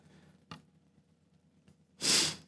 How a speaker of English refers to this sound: Man, I've got the sniffles. I feel sorry for y'all having to listen to that.